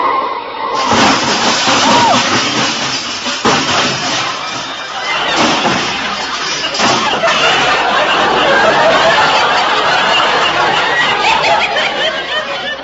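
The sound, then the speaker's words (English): A big black touring car skids and crashes, loud: harsh grinding noise with sharp bangs near the start, then a long stretch of rattling, crunching wreckage and clatter that keeps going to the end. “look out! That car! What car? That big black touring car!”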